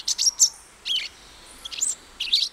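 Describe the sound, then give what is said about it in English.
A euphonia calls in four short bursts of bright, high-pitched chirping notes, separated by brief pauses, with no voices. “The euphonia, meanwhile, sits tight, maybe shouting out a few more bogus alarms while others do the dirty work.”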